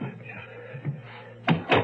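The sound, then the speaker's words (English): Two sharp, loud knocks on a door land in quick succession near the end, following a stretch of low, muffled background rumble. “Who's at the door?”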